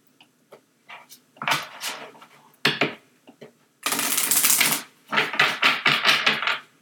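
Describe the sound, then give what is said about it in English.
A deck of picture cards with Kuan Yin on the back is shuffled: scattered light taps, then a dense papery riffle lasting about a second, followed by several quicker bursts of card flicking, with no one talking. “And we're just going to shuffle this.”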